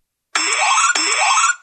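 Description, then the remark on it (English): A contestant's harsh electronic quiz-game buzzer blares twice in quick succession, each burst a loud, raspy, sustained tone about half a second long, abrasive and grating with no voices over it. “Jessica, what does yours sound like?”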